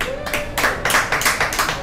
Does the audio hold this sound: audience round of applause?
yes